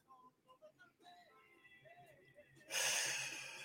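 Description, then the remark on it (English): A soft, quiet intake of breath through the nose, followed by a loud, airy exhale through the mouth that rushes out for about a second before fading, during a mindful breathing exercise. “Breathe in through your nose and out through your mouth.”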